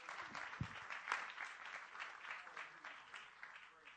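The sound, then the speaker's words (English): An audience claps their hands unto the Lord during a sermon in a dense, steady wash of applause lasting the whole stretch, with a few sharper claps standing out and faint voices mixed underneath. “Put your hands together, would you? Clap your hands unto the Lord.”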